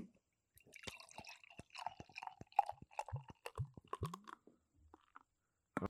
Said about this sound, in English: so we got the third beer of the podcast poured